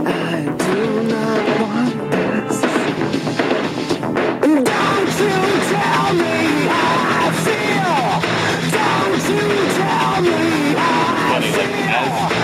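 Loud, dense industrial rock with a harsh screamed vocal tearing over distorted instruments, the mix thickening into a wall of noise after a few seconds and staying intense throughout.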